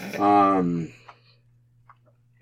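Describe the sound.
A single loud, voiced sneeze bursts out at the start and fades within a second, followed by near silence with a low steady hum and a few faint clicks.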